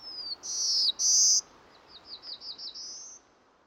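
A songbird sings a bright, high-pitched territorial song, used for defending its territory and communicating with other males: a few sustained whistled notes followed by a quick series of rising chirps, clear over a soft background hiss.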